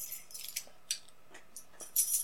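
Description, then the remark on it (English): Light metallic tinkling of a dog's collar tags as the dog moves around, jingling in several brief, irregular bursts with a slightly louder shake at the end; quiet, no voices. “Anyway, I've had, by the way, a lot of tinkly sounds in the background of my audio.”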